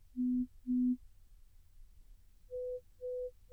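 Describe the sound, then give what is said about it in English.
Pure-tone hearing test beeps in a soundproof booth: two low steady tones, then a higher-pitched set of three, the last cut short, each a brief clean sustained note separated by short gaps of quiet. “With each one of those beeps, I'm raising my hand to acknowledge that I heard it.”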